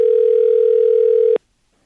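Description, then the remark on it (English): A telephone call rings out: one steady, humming electronic tone at a low-mid pitch lasts just over a second, then cuts off abruptly into silence. No one speaks. “Just want to give her a quick call because I feel bad if like she's expecting us to call.”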